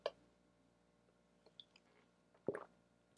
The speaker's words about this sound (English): Let me just drink some water here.